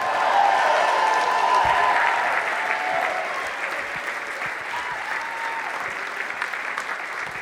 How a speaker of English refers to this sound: Well, give Jesus a great big hand clap.